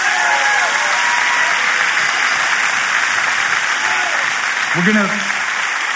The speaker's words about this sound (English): Now clap your hands if you want to live that way.